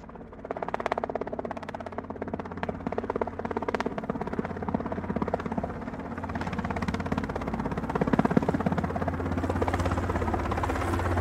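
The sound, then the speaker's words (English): A steady drone rotor buzz hovers overhead for the whole stretch, a dense mechanical whir that swells slightly toward the end, with no voices. “Well, as the disciples are talking about the event and the people in the crowd, seeing if they could recognize anyone from their Facebook page, the drone pans in on Jesus.”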